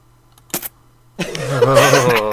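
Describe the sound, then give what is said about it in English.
A quick sharp pop, then after a short pause a voice makes a drawn-out, wet, gurgling squelch, imitating a doctor's knife cutting open a swollen ear to drain it, like poking a balloon full of mayonnaise. Fairly loud. “Like poking a balloon full of mayonnaise.”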